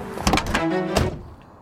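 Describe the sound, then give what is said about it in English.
A car door shuts with a solid thud, preceded by a brief mechanical rattle and followed by a second dull thunk, then the sound quickly fades to near silence. “Oh, please tell me you've got a car out here. Entering vehicle.”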